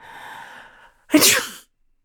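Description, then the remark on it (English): A breathy inhale with a faint whistle builds for nearly a second, then a single loud sneeze bursts out and cuts off into silence. “Oxygen stopped feeding my brain, and with my final breath, I sneezed.”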